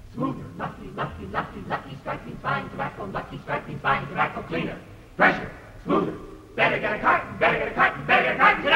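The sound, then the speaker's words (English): A group of voices chants a rhythmic college cheer on The Jack Benny Program radio broadcast presented by Lucky Strike, a fast run of short, loud shouted syllables that builds to a fuller, more energetic burst near the end. “You know, that college cheer represents a lot of smoking cheer on campuses all over the country.”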